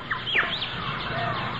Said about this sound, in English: Much of it is bird and monkey, harmless creatures. But if you listen closely, a jaguar and perhaps a puma also.